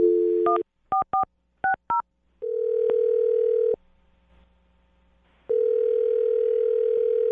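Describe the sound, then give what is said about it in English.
A rapid series of about six touch-tone dialing beeps as someone dials a phone to call a person, then a loud steady phone tone that sounds for over a second, stops, and returns after a short pause. No one speaks. “All right, I'm going to dial his phone right now.”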